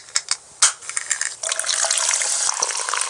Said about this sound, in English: Here's someone opening and pouring a drink.